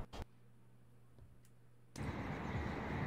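A low steady hum with a few sharp clicks gives way, about two seconds in, to a loud broad rush of road traffic as cars pass and keep roaring.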